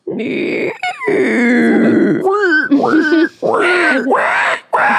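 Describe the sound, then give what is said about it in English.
A person imitates a pig squeal with a string of loud, wavering, nasal squeals and grunts that slide up and down in pitch, broken by a few short pauses. “Or can you do a pig squeal?”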